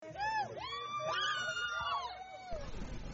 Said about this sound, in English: Splashes, cheers, and excitement could be heard at the River Park Pool in Athens, Ohio, Saturday afternoon. Rivergate Apartments hosted their 7th annual Polar Plunge.